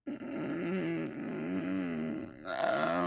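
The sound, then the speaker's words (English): A person imitates a growl with their voice: a low, rumbling, wavering snarl held for about three seconds, swelling into a slightly harsher burst at the end. “Are you growling at me?”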